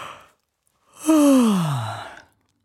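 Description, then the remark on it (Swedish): A single drawn-out yawn from one person, fairly loud, its breathy voice sliding steadily downward in pitch over about a second before trailing off into silence. “Lyssnarna, är det någon som gäspar? Det är många som gäspar där ute nu, tror jag. Jag blev gäspsugen.”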